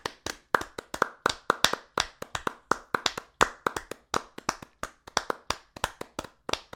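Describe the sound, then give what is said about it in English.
Brisk, steady hand clapping by one person demonstrating classic opera applause, a quick run of sharp claps at a fairly even pace. No one speaks. “But that classic opera applause, like this.”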